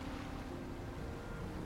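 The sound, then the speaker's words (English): A steady, dense roar of ocean surf and rushing wind fills the short stretch, loud, with no voices and no breaks in the wash of sound. “Feel the air rushing over you. Feel the sea foam hitting you in the face.”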